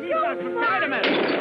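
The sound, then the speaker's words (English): Voices shouting over one another give way to a loud, jumbled crash of dishes breaking in a Three Stooges cartoon, a dense clatter of shattering crockery that fills the final half second. “Man, we're breaking dishes.”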